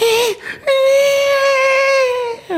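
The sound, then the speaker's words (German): A voice imitates a baby's whimper heard over a baby monitor in the evening, around 8 or 9 pm: a short wavering cry, a brief pause, then one long, steady, high-pitched wail that fades at the end, loud with no other sounds. “Und dann kann es auch mal passieren, dass irgendwie so 20 Uhr, 21 Uhr, wir hören übers Babyfon so ein...”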